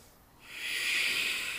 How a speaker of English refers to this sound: Now, ujjayi breath.